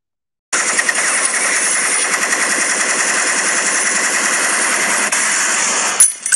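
A loud, sustained burst of automatic gunfire, a rapid, steady rattle of shots lasting about five seconds before cutting off abruptly. No voices.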